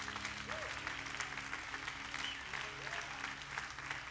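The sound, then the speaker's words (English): A room full of people claps steadily for several seconds, a dense, sustained wash of applause at moderate volume with no pauses, faint murmuring mixed underneath. “Come on, if that had been your house, you'd have clapped a little bit better than that.”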